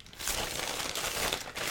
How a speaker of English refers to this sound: All right. So I know I love making all the rustling sounds.